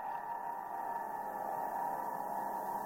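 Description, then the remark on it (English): An eerie, sustained ringing drone of open piano strings reverberating after people scream at them, a steady metallic shimmer with slight distortion that hangs without fading over a few seconds, with no voices. “Not recording their own screams, but they would stop and record the reverberation in the strings.”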